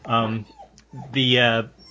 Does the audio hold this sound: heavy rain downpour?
no